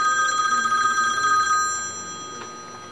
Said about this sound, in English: Okay. So maybe that's just that somehow the phone is, we're dialing. The phone is ringing when I get a message instead of bing.